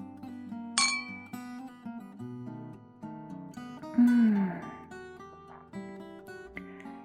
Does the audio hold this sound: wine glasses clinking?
yes